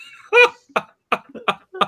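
A run of about five short, harsh coughs, fairly loud, the first strongest and the rest following in an even, rhythmic series with brief pauses between them.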